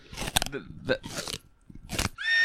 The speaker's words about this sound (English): Like I'll eat a watermelon rind if you bring it to me. You got to get a good crunch.